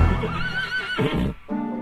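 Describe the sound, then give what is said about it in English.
A horse whinnies loudly, a long wavering neigh that rises and falls before breaking into shorter snorting bursts near the end. “he wants a frisky steed, does he? Bring out Dr. Death”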